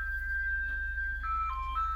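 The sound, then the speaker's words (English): An ice cream truck's tinkly electronic jingle plays outside as the truck passes by a house, a simple stepping melody over a steady low hum, with no one talking. “a truck coming by her house selling ice cream”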